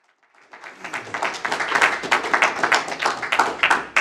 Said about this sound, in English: I always tell people don't clap because you haven't heard it yet. Wait until the end.